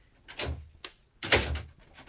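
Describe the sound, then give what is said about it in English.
The handle of a locked door to a doctor's room in his consulting rooms is rattled and pulled, two firm jiggling bursts with a short click between them, with no voices. “It's locked.”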